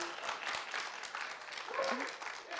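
Subdued, half-hearted cheering from an audience, a thin wash of scattered clapping and a few voices calling out, holding at a fairly quiet, steady level for a couple of seconds.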